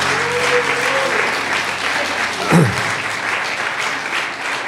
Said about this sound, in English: Come on, if you're going to clap, let's clap. Let's clap.